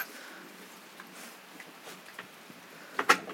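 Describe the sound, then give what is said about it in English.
The wooden half door of a shepherd's hut in a garden opens: soft scattered knocks and shuffles, then a short creaking clunk near the end, not loud, with no talking. “Ah, it has a half door.”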